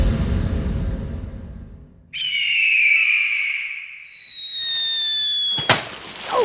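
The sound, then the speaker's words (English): A rushing whoosh of a bald eagle flying gives way to a shrill, steady whistle, like something screeching overhead and falling, ending in one sharp burst as a large water balloon smacks down on a porcupine. A comic sound-effect sequence with no talking. “The sound of a bald eagle flying and dropping a water balloon on a porcupine.”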